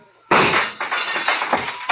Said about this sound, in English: Keep shooting, Saxon, in the dark. You got four shots left.